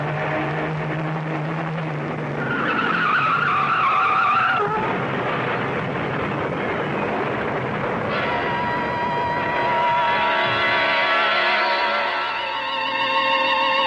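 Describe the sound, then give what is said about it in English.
A car swerves off the road to avoid a truck and skids, its tires screeching in long, loud squeals over a roaring engine and rushing noise, with a second sustained skid building toward the end. “A truck. Turn the wheel. Go off the road.”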